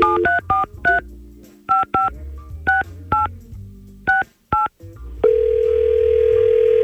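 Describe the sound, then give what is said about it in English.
A rapid series of about ten touch-tone telephone dialing beeps in an uneven rhythm as a call is placed to a man, followed by a steady ringing tone that holds to the end. Clear, with no talking. “Let's see if we can get him on the phone and figure out what the heck happened.”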